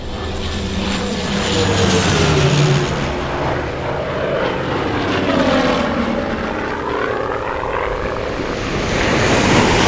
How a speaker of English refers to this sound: It's not your plane, and I warned you. Now touch down on the water before you enter into a death spiral.